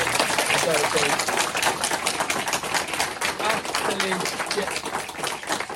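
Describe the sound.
An audience breaks into a huge round of applause for two speakers at the end of an evening event, a dense, steady wash of many hands clapping at once for several seconds, with a few faint voices and cheers mixed into the noise.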